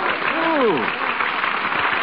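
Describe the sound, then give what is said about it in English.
A crowd applauds Pasteur as he comes onto the platform, a steady, dense wash of clapping that continues throughout, with a brief voice rising above it near the start. “Why, it's you. They're applauding you.”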